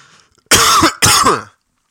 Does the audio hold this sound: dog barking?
no